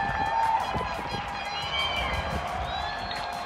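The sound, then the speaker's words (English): A crowd in London claps continuously for hospital staff, a dense patter of many hands, with scattered cheers and a few high whistles rising over it. “In London, an ICU nurse told her boyfriend she didn't believe there would be any clapping. She was wrong.”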